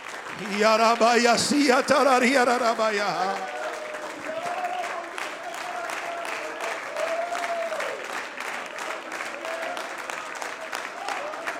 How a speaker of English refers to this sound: Oh, would you clap your hands unto Jesus Christ right now?